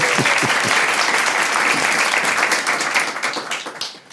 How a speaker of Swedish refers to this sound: Ja, det är värt en applåd.